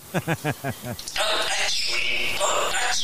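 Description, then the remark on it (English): Two parrots swear in human-like speech, rattling off a quick string of spoken syllables, then break into loud, harsh, sustained screeching and squawking. “And just because these are so easily accessible, here's a couple parrots swearing.”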